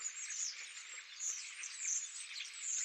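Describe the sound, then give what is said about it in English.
A large flock of migrating starlings in the city of Rome chattering in a continuous, dense wash of high chirps and whistles, steady throughout, with no voices. “Well, I'd have to say the starlings, migrating birds that come through the city every year.”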